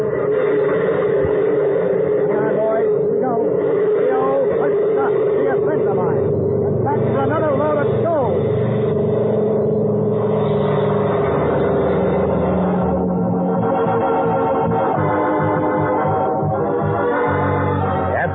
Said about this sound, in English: Once I get the engine started, I'll switch on the landing lights. That ought to do it. Okay, kid, give me a hand. Okay. We got to start both engines at once.